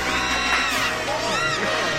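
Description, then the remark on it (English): A crowd cheers continuously for two seconds right after a carbon rod is discovered, the voices unusually shrill and squeaky, with overlapping whoops rising and falling in pitch over a steady, loud roar. “is the weirdly high-pitched cheers right after the carbon rod is discovered.”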